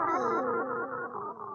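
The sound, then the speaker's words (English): A voice over a bad phone connection, garbled and warbling with echoey, metallic distortion, so no words come through clearly. It stays fairly loud for under two seconds. “You're going to have to move to a different spot. I can't hear you again. You're breaking my up.”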